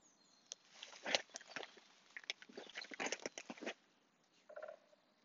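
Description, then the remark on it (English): A woodpecker pecks at wood in irregular bursts of sharp, dry taps, some clustered and some spaced apart, fairly faint, followed by a short call near the end. “I'm closing it out with the woodpecker.”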